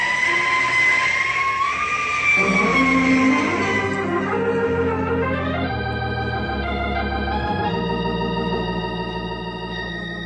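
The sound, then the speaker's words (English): A fire engine drives along loudly, its rumbling motor under sustained wailing tones that slide and step in pitch, continuing steadily throughout with no voices. “We take fire engine plenty quick.”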